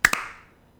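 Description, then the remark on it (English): Two sharp hand claps, made to sync a recording before it starts, land a fraction of a second apart, loud and crisp, followed by a short fading ring and then quiet. No one speaks. “All right, let's clap. 3, 2, 1.”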